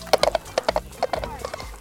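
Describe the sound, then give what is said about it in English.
Donkey hooves clop along in quick, uneven groups of sharp hollow knocks, fairly loud, with no voices over them. “I will now saw this donkey in half with a butter knife. I'm out of here.”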